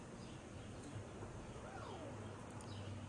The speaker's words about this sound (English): It's really hot outside. The birds are chirping. The sun is out. It's a beautiful day.